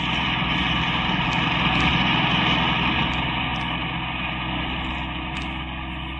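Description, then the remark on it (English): A car's engine hums steadily as it drives past Octavia toward Laguna and Broadway, a continuous low rumble with no breaks or changes in pace, and no voices over it. “I dislike being repetitious, girl, but the car's still following us.”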